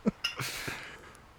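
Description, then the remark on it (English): A couple of quick glassy clinks, then a short splashy rush of liquor being poured as a shot, quite a large pour, fairly quiet, trailing off after about half a second. No one speaks. “Similar to my first pour. Just way too much.”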